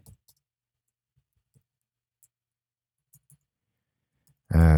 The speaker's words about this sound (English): You hear me typing? That was enthusiastic typing for radio.